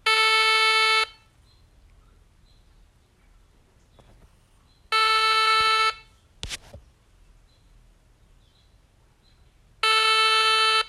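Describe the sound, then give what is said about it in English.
An outgoing phone call's ringback tone: three steady, buzzy one-second rings spaced about four seconds apart, with near-silence and a faint click between them and no voices. “All right, guys, I'm calling him already.”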